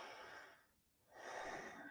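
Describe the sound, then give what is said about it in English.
A single deep, heavy breath: a long airy inhale, a brief pause, then a fuller, slow exhale, with no talking. “Take a deep, heavy breath.”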